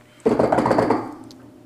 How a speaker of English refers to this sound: I'm typing T9 on my keyboard. T9 is like the old way you typed on your phones. Or like press 1 like 3 times.